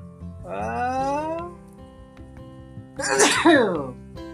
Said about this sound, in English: And in 10th place, oh, I have to sneeze.